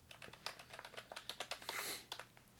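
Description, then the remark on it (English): Rapid, irregular clicking of fingers typing on a computer keyboard, a quick run of keystrokes with brief pauses, fairly quiet and with no voices. “So typing the show.”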